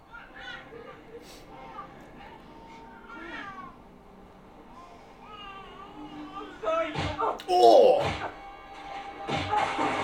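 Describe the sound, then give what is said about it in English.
A quick run of heavy, identical-sounding punch effects lands near the end, several sharp thuds in a row, following earlier high, wavering cat-like meows and faint voices. “Coincidental that those punches all sounded the same.”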